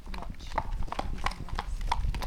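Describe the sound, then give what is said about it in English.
A horse's hooves trot on a hard back road in a quick, steady rhythm of sharp clip-clop strikes, with a low background rumble. “We can walk him away and trot him away for a wee bit, and then we'll trot him back again.”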